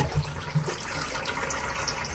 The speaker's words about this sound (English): He flushed the toilet for you. Now, the question is when he flushed the toilet down there in Australia, did it go the right way? Isn't that a myth?